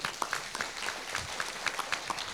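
An audience claps steadily, a dense patter of many hands with sharper individual claps popping out of the wash, sustained at moderate loudness throughout with no voices over it.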